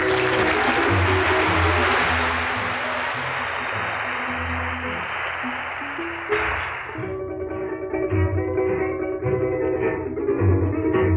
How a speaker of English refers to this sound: Please, a round of applause for Mr. Bill Tapia.